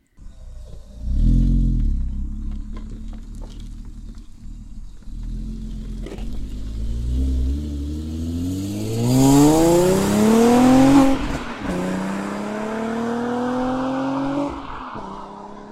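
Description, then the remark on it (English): A manual car with a new custom exhaust system, loud with a deep, throaty exhaust, idles with a low rumble, then revs and accelerates, pitch climbing steadily before dropping after a gear change and rising again, with no talking. “Lee and I were actually out with our recording gear today and having a bit of fun with the new exhaust”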